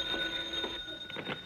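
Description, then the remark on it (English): A telephone rings with a steady, high electronic tone and rapid repeating pulses, fairly quiet, with no one talking. “I'll get the phone.”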